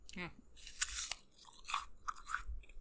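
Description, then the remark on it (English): Crunchy food being chewed right up against the microphone, a series of crisp, loud crackling bites in an uneven rhythm, with a brief vocal sound at the start. “is this too crunchy? Ooh. No, that's probably some good ASMR. If you get real close to the mic.”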